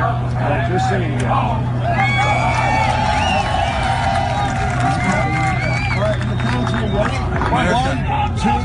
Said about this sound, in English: And Bill Murray got things going on the first hole yesterday by getting the entire crowd there to chant America.